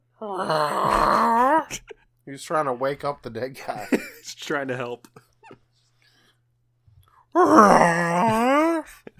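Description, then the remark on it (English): A voice imitates a cat's strange, drawn-out meow, a loud wavering wail heard twice: once at the start and again at the end, with a stretch of ordinary talking in between. “Doing that weird meow it does.”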